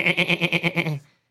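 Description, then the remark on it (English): A person imitates a goat's bleat: one loud, nasal call of about a second with a rapid, pulsing quiver of roughly eight beats, ending abruptly in silence. “He's the goat.”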